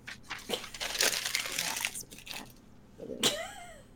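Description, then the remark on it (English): A sheet of paper is crumpled up to be thrown away, a burst of crackling, crinkling rustles lasting a few seconds, ending with a sharper crunch as the ball is squeezed tight. “we pretty much discussed everything on this list, so I will just get rid of that paper there.”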